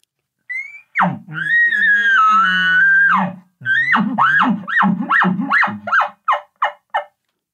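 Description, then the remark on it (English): A rising, high whistling elk bugle, an aggressive bugle made by a caller to a bull elk, holds for a couple of seconds, then breaks into a chuckling sequence: a rapid string of about ten grunting chuckles that grow shorter and fainter toward the end. “My first aggressive bugle is going to be as he's clearly moving in the direction I want. I'll start the chuckling sequence.”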